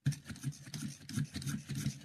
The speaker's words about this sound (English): Yeah, you heard that. That is the crank pencil sharpener, the old Boston. Just using it, getting it ready, and getting my pencil ready to jot this down.